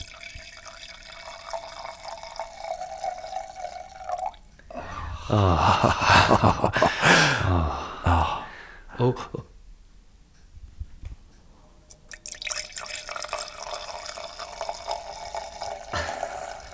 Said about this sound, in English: That wine that you've opened. Well, should we bloody pour it or what?